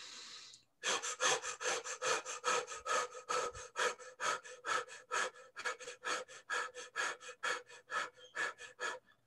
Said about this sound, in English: So if you saw what I did, or if you could hear what I'm doing, essentially you're breathing in through the mouth and back out through the mouth in short breaths, using the belly as a guide. So it's not in the chest, it's a lower belly breath.